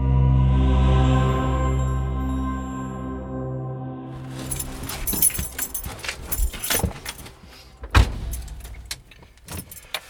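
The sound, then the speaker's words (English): Inside a parked car during a lunch break in February 2021, a low engine hum cuts out after a few seconds, followed by irregular jangling and clinking of keys with a few sharper knocks. “I'm in my car and I'm on my lunch break.”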